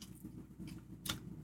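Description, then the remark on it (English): A quiet crunch as someone bites into the crust of a pepperoni pizza, one sharp crackly burst amid soft chewing and mouth noise, with no one speaking. “Crust doesn't look that good, but it's got a really nice crunch.”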